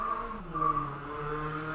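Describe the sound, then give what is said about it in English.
A sports car's engine hums steadily as it drives by outside, its droning pitch dipping and then rising again, loud and continuous for the whole stretch with no voices. “That was it outside? Yeah. That's what made me think of it. It just drove by.”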